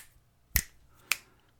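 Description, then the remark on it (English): Two crisp finger snaps about half a second apart, each a sharp bright crack that fades quickly, the first slightly louder, over faint background hum. “There's only two. That was one extra click.”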